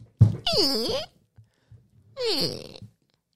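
An office door hinge creaks twice, each a drawn-out groaning squeal whose pitch sags and then climbs, with a brief low thump just before the first creak and quiet gaps between.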